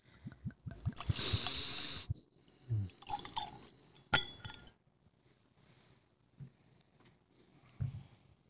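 A heavy, thick dark-glass triangular whisky bottle clinking and knocking, a few sharp bright taps and scrapes over about five seconds, then quieter handling sounds and soft thuds.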